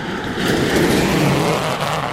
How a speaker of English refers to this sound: That was a car. That's a weird sound that it makes. Well, I wonder if it's the trailer that he was pulling. Maybe one of his tires isn't good anymore.